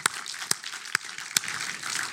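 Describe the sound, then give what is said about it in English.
A church crowd at North Valley Church claps for the worship team after singing on a Sunday morning, in a steady, fairly moderate wash of applause, with a few sharper claps popping out above the dense patter. No one speaks. “Let's give the worship team a round of applause.”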